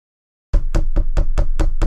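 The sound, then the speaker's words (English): Loud knocking on the door of Hagrid's cabin, reached through frozen grounds one evening: about seven quick, evenly spaced raps after a short silence, each a sharp hollow thud, with no voices. “They knocked, and Fang's booming barks answered.”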